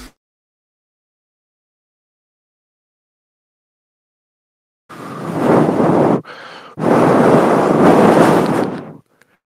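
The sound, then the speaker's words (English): Someone blows hard into a breathalyzer in two long, breathy bursts separated by a brief softer gap, the rushing air loud after several seconds of silence. “Would you blow into this breathalyzer, please?”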